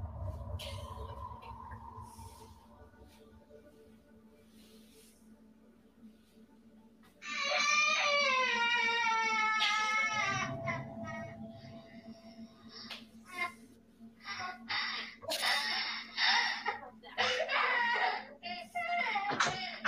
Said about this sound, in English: Zark hears a child crying in their living room and thinks that it's his son.